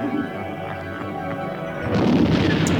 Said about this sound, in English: Oh, here we go, some lovely explosions.